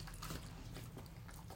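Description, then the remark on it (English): A dog munching on crunchy cheese balls, a quiet run of irregular crunching and chewing bites over a low hum, with no one talking. “over here munching on cheese balls.”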